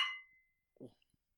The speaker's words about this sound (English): So, let's cheers. Aye.